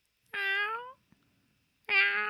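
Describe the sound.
A person imitates a cat with two loud meows separated by a short pause, each a drawn-out, tonal cry that sounds convincingly feline, with no other talking.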